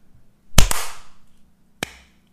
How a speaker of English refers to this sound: I just waited a random amount of time and I imagined that we were all going like this. I just clap.